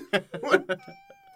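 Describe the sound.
A voice imitates a Skeksis, a creepy fantasy creature: several choppy, raspy, cat-like yowls in quick succession, then a thin, steady high whine that trails off faintly.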